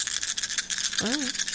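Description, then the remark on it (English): Seven dice rolled during a tabletop role-playing game clatter and rattle in a steady, dense stream of light clicks, with a short voiced sound from a person breaking in partway through. “Okay, I rolled 1-1 and 1-6.”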